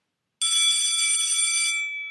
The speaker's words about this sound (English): There's the bell.